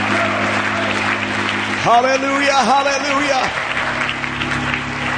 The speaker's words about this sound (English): Let's continue to clap our hands unto the Lord and give him praise tonight. Oh, let's love him. Somebody lift up your voice. Somebody clap your hands. Somebody make a joyful noise unto the Lord.